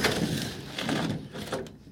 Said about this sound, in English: You might recognise that noise. It's the old sliding polytunnel door. Since the polytunnel blew away, I've put the door on the greenhouse because the greenhouse lost a door in the wind.